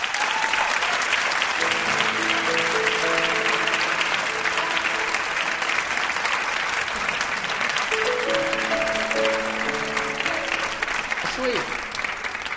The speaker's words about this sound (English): Back there in the conversation, and I heard this applause, so I guess it's time.